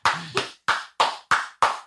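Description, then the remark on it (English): A clap slapper toy, chosen by a Wheel of Doom game, smacks against someone in a quick, even series of about six sharp, loud slaps, with a brief low vocal sound near the start. “It's different when you know where the person who's getting clap slapped may have purchased this thing for recreational purposes.”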